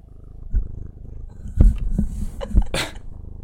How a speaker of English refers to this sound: Oh, the cat is hugging the microphone. That's adorable. Yeah, she is. I'm so distracted by the cat right now. She's a little co-host.